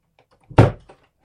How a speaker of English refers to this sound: Let me close the door properly. 1 second.